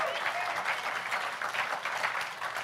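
An audience claps steadily for God during a church sermon, a dense, even wash of many hands applauding at a moderate level with no voices standing out.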